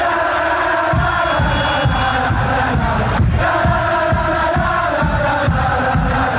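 A large crowd of football fans at the championships in France chants a rhythmic terrace song in unison, loud and continuous, with a steady pulsing beat running throughout.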